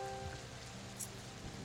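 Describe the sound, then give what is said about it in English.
Steady rain patters on a hard surface, a dense, continuous hiss of drops with a low background rumble, fairly quiet and with no voices. “So as you're walking through the rain down the road”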